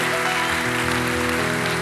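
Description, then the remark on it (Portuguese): A church audience applauds the Lord in the morning after a prayer, in a loud, steady wash of dense clapping, with sustained organ-like chords holding underneath throughout. “You applaud your Lord this morning?”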